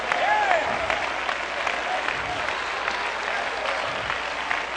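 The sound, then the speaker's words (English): A large church audience claps steadily and loudly throughout, shouting yes to the Lord: a dense wash of applause with scattered shouts and a rising whoop near the start. “Clap your hands and shout yes to the Lord.”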